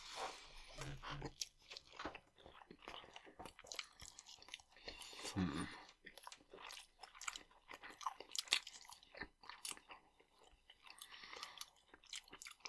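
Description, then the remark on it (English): Crunchy chewing of a well-done doner kebab pita with a crispy outside, with repeated crisp bites and grinding mouth sounds in an irregular rhythm, loud throughout. “Extra crunch is all from me tonight.”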